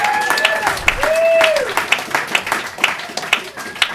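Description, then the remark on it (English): An audience at a comedy show bursts into steady, dense applause for a comedian being introduced, with sharp overlapping claps throughout, joined by a few high, sliding whistles and cheers rising above the clapping. “You guys give a round of applause for our dear friend, the hilarious”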